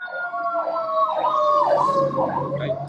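Wailing emergency vehicle sirens in the inner city rise and fall in overlapping sweeps, fairly loud and steady, with a low traffic rumble underneath and no talking.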